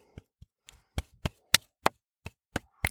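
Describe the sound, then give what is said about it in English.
Hands clap about ten times in an uneven rhythm, each clap sharp and crisp, some noticeably louder than others, with brief silences between them and no talking. “if you heard that, that's me clapping.”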